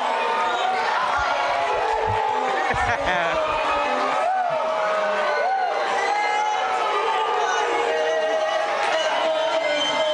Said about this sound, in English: This is just some random person. This is just an example of what happens when you get booed at the Apollo. Let me hear.